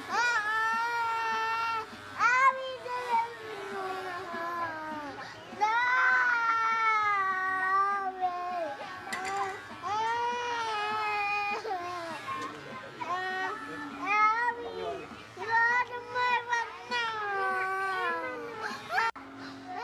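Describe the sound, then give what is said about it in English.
A three-year-old toddler screams and wails nonstop while getting a haircut, loud, in long rising and falling cries broken only by quick gasping breaths for almost twenty seconds. “… a year later, same instance, getting his haircut, and as you hear him scream for his life”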